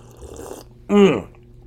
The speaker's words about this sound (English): Let's take a slurp of our coffee before we start.